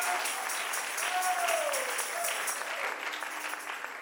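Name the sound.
audience clapping hands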